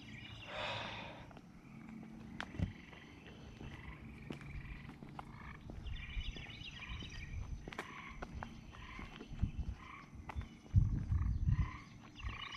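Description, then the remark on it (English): A frog croaks with an echo in a stairwell, its calls coming in short bursts that ring and hang in the air, louder in places, with low rumbling and faint shuffling underneath. “One of those frogs that's like inside the stairwell and echoing.”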